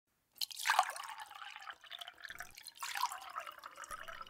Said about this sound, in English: Can I get you a drink? Sure. The bourbon? Yeah, sure. How do you take it? However it's poured.